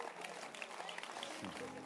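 A crowd claps steadily for about two seconds, a dense patter of many hands filling the room at moderate loudness, with some voices mixed in beneath the applause.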